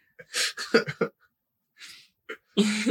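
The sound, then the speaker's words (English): A dog named Buddy makes a string of short, breathy grunts and snorts in irregular bursts, with a pause in the middle and a longer, lower-pitched grunt at the end. “He's making so many grunting sounds.”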